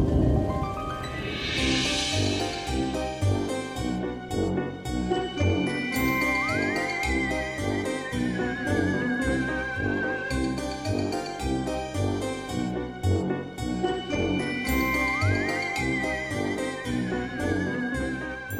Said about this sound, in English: And the jingle bells are ringing.